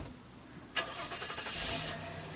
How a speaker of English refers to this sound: Clemence walked to the car, got in, and drove off.